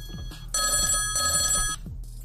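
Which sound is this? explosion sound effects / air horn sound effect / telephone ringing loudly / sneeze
telephone ringing loudly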